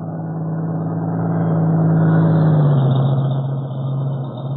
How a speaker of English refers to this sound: We're waiting for a truck to come from the direction of Maywood, Cato. Also, I have a feeling that not far behind the truck there will be... A truck coming down, Mr. Breed. Yes, I hear it.